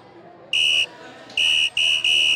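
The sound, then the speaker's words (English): A game clock buzzer blares in four loud, steady, high-pitched bursts, the last three coming in quick succession, over a faint low background murmur. “That's the whistle sound that we got.”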